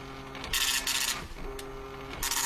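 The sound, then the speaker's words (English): A dot matrix printer prints in harsh, buzzing bursts separated by brief pauses, with a steady mechanical whine underneath as the print head moves back and forth, with no talking. “That is a dot matrix printer.”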